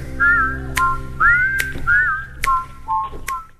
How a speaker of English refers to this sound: I hear whistling. Yeah. It's good stuff.